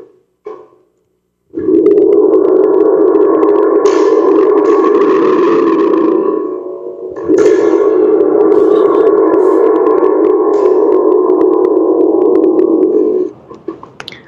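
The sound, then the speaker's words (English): A Remo spring drum, a percussion instrument, rumbles like rolling thunder, a loud, reverberant roar with a metallic, boingy ring, played in two long sustained swells with a brief dip between them and no talking. “This is called a spring drum, and it's a percussion instrument from Remo, and it emulates the sound of nature.”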